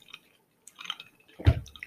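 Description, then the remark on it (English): Small wet clicks and slurps from someone drinking, then a louder, fuller swallow or gulp near the end. Brief and fairly quiet, with no voices. “I'm getting a drink.”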